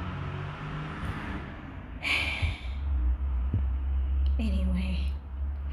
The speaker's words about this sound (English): This is the loudest truck in the world. My God.